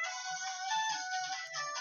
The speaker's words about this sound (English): Whose music is this, and do we owe them money?